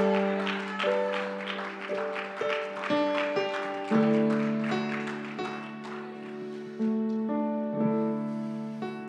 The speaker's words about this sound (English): Stand to your feet and clap your hands unto the Lord. Somebody shout unto God. Hallelujah.